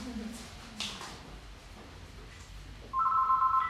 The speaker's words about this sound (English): There is a phone ringing.